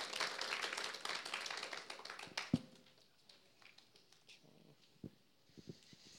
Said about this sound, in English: Yeah, that's a clap.